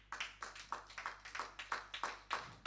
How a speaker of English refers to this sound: Give him a clap offering.